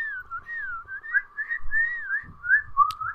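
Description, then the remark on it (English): Two people whistle together in harmony, one holding a steady lower note while the other warbles a wavering melody above it, continuous throughout with no talking. “And when two whistles go the at the harmony.”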